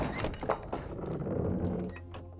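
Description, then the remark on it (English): Heavy temple doors are pushed open by Geppetto, grinding with a low, rumbling scrape, broken by a couple of dull thuds and faint high creaks. It's fairly quiet and steady, with no voices. “Weak from exhaustion, infection, and atrophy, Geppetto was barely able to push open the doors.”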